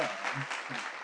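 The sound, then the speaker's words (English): A small group clapping on request for the suggested name 'Chick-fil-A', a steady, dense patter of overlapping hand claps, fairly quiet, with a faint voice murmuring underneath. “Yeah, clap for the Chick-fil-A. Go on, let's have a clap on these.”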